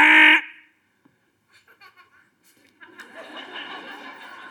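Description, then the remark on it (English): A loud, harsh game-show buzzer blares once for under half a second, followed by a pause with faint scattered sounds, then chuckles and laughter from a small group. “Well, newsflash, folks, the cosmic buzzer has already buzzed.”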